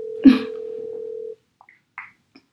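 A phone call being placed: a steady, low dial tone hums after a click, then stops, followed by a few short, sparse dialing beeps. No one speaks.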